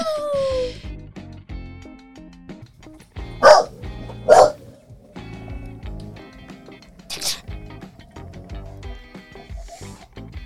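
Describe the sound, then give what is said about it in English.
A dog lets out two loud barks in quick succession, then a third sharper yip a few seconds later, over a low murmur of voices and background noise. “Intro, dogs.”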